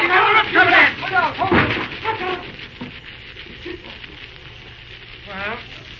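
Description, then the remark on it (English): A building fire burns with dense, hissing crackle and sharp pops, loudest at the start and then settling into a steady roar, while shouting voices rise briefly over it. “I'd like to know how that fire started”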